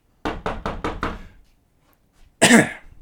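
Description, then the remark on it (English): Five loud, rapid bangs on a door in a steady rhythm, followed after a short pause by a single harsh, louder burst of noise. “I'm banging the door down.”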